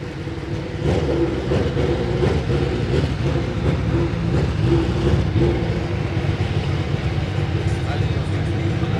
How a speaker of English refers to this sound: Formula One car's just started, you'll probably hear it in the background with its V8 Judd there, thudding away.